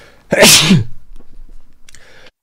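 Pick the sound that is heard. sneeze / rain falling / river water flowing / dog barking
sneeze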